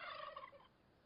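A turkey gobbles once, a loud, rapid warbling burst lasting about half a second before trailing off into quiet. No one speaks.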